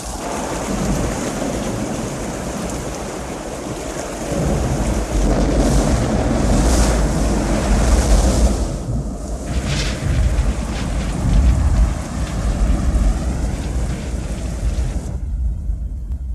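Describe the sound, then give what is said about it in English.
A torrential downpour, the deluge of condensed clouds of gas and steam raining upon planet Earth, roars steadily and loudly, with deep rumbles of thunder rolling underneath; no voices, and the storm cuts off abruptly near the end. “The deluge.”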